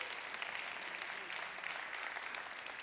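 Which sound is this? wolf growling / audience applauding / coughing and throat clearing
audience applauding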